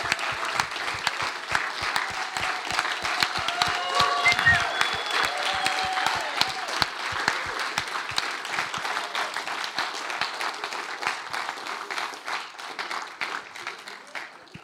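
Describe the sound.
A crowd applauds steadily for about fifteen seconds, a dense wash of many hands clapping that holds loud and even before thinning slightly toward the end, with a few voices faintly mixed in.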